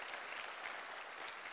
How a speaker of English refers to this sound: And in just a moment, when we get done, yeah, put your hands together. That's your time to clap.